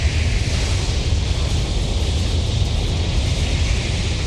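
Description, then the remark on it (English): A dense, unbroken buzzing drone like a swarm of locusts, a sound effect from the film Pumpkinhead heard when Pumpkinhead appears, loud and steady throughout, with a harsh hissing upper layer over a rumbling low end and no voices. “Like, there's this weird sound effect. It's like locusts.”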